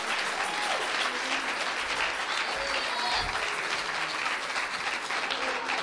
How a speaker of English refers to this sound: Give the Lord a clap offering right now. Give the Lord a clap offering right now.